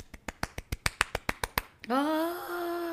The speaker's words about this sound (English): Oh, that's a round of applause. Yes.